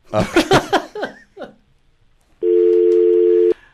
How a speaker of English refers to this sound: The dial tone happened. Okay. Dial tone happen.